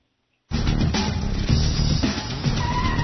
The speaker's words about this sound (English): Sandler's got to get to work or something, and they're driving, and he's driving like a maniac. And Nicholson is in the car with him, and he needs him to just center himself and manage his anger.